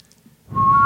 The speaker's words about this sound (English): How did you do that? Just from the whistling? It's echo location.